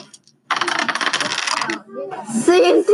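Dice are re-rolled after snake eyes, rattling and clattering for over a second in a busy burst of hard clicks, then settling; a voice speaks right after.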